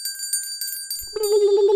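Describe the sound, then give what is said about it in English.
A bright, high bell rings rapidly several times in quick succession, like a small bicycle-style bell, then gives way to a steadier, lower sustained tone that carries to the end; the bell marks the sound round of a quiz. “Ladies and gentlemen, ring the sound round bell.”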